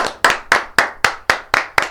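Clapping in a steady, quick rhythm, about eight sharp, bright claps evenly spaced roughly four per second, each with a short ringing tail and no voices.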